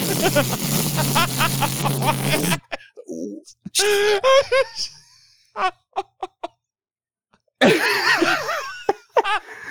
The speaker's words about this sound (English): He has the ability to fly, but when he flies, it sounds... How'd you describe it in your notes? He sounds like a farting Indy car. It sounds like a farting...